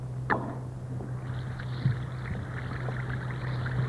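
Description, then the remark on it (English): An Alka-Seltzer tablet makes a small plop into water, then a steady crackling fizz of tiny bubbles holds for several seconds over a faint low hum, with no voices. “That's Alka-Seltzer, all ready to bring relief for any one or all these troublesome, annoying ailments.”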